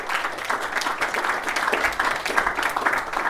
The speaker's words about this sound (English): Okay, let's thank you guys. Off you go. Next panel. Yeah, round of applause.